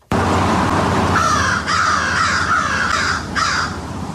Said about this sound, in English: Yeah, that's easy. That's crows. Those are crows. That's definitely crows. That was one of the easiest animal ones that you've given me so far, I will say.